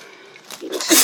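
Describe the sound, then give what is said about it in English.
A single sneeze: a brief breathy intake building up, then a sharp, loud burst of hissing noise at the end. “Bless you.”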